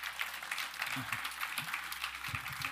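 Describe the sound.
An audience claps steadily at the end of a sermon in a worship service, a dense, sustained patter of many hands at moderate loudness, with a few brief voices rising underneath.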